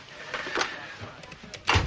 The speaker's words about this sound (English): Close the door.